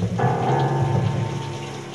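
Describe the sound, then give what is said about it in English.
Water runs steadily in a bathroom, a continuous hiss like a shower or tap, with a low sustained tone swelling in underneath after a moment. “She's approaching the sound of running water in the bathroom.”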